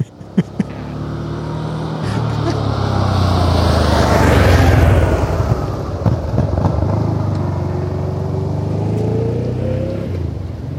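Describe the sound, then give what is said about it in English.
A motorcycle engine drones, its pitch sinking and then climbing again as it revs through a U-turn, loud and continuous for the whole stretch with a couple of sharp clicks at the start. “It's a boring bike. All right, before you turn everyone away, it's getting to the U-turn.”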